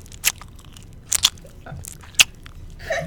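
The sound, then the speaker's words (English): Gum being chewed right up against the microphone, with a handful of sharp, wet clicks and smacks at irregular intervals over a quiet background, with no talking. “What are you chewing? Gum.”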